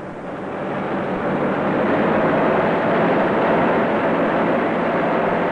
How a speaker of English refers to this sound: A car traveling fast along the road to Eastwood. Its twin lights cutting beams in the darkness of the night.